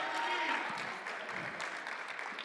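An audience applauds steadily for a couple of seconds, a dense, even patter of many hands clapping at constant loudness, with a brief faint whistle early on.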